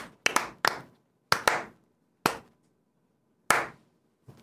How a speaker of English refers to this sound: Hasbro, slow clap.